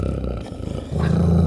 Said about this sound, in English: mingling with his cries were such hoarse, savage sounds as one hears from fighting dogs.